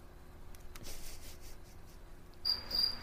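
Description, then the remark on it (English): After near silence, crickets chirp in two short, high, bright bursts toward the end, fairly quiet over a faint background hiss, with no one talking. “There's like, the crickets.”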